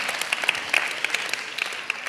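crowd, one person clapping

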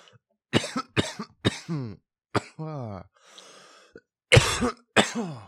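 human body sound, cough into the microphone

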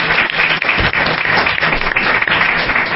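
crowd, audience round of applause

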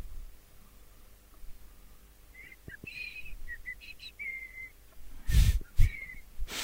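human body sound, person whistling

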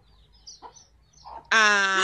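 bird, chicken clucking

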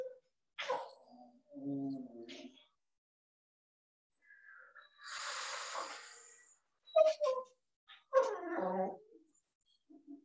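animal, dog whimpering

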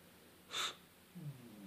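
animal, snoring

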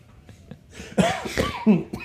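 human body sound, cough

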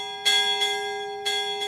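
sound effect, bell ringing sound effect

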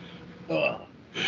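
human body sound, coughing

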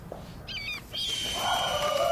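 bird, birds chirping and calling

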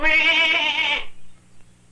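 animal, billy goat bleating

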